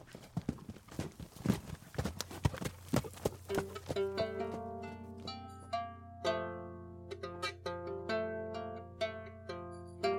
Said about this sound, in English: He mounted his horse and rode off.